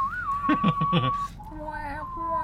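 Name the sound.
human whistling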